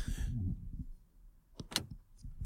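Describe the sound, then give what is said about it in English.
A car's doors lock by remote: a low mechanical whir gives way to a couple of sharp clunks and a bright clicking snap, with a brief high chirp near the end. “We'll make a compilation of like your chewing, the car locking.”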